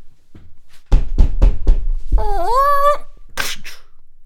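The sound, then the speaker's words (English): A few sharp knocks in quick succession, then a man's voice imitating a long creaking door, ending in a short breathy burst meant as the door slamming shut. “It sounds like a man making a door sound.”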